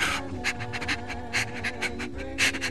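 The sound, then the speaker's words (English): A dog named Gamju panting, quick breathy huffs repeating in a steady rhythm, about two per second, with no voices over it. “He fell down to his knees and put his arms around Gamju, and Gamju had little choice but to pant and smile with his tongue out.”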